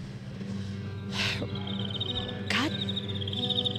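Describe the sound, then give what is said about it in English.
Crickets chirp in a steady, rapid pulsing trill over a low droning hum, broken by two short bursts of hissy noise. “So that is to the crickets.”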